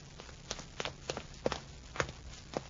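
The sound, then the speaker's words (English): Footsteps climb stairs in a tower, taken instead of the elevator after a lightning bolt, in a steady, brisk rhythm of about eight or nine sharp, knocking treads over a low background hum, with no voices. “You better not risk the elevator after that bolt. We'll use the stairs. I'll go first.”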